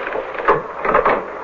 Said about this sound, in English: Shut the door.